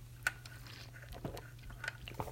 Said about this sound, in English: I'm going to stand up right now and get a sip of my good old blue Starbucks cup iced coffee here.